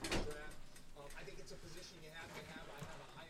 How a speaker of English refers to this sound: Can I close the door? Yeah, sure.